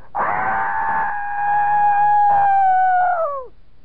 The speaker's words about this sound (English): Another wild, fantastic scream, and then you hear faint thumpings. Boom, boom, boom, boom.